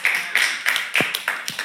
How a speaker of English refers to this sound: We can ooh and ah and clap if we want to.